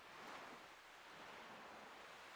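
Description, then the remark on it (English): Steady ocean surf washes continuously onto the shore, a broad hissing rush of breaking waves, with a faint wind-like roar and no voices. “And the sea never changes, does it? It's been rolling in and out like this since long before we were born.”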